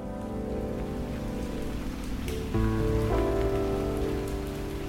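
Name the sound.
rain falling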